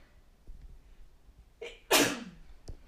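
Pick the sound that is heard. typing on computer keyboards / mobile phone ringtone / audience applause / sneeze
sneeze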